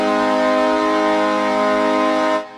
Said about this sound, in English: We might even arrange to have you call into the program for the purpose of participating. And you might get a penguin's goal horn.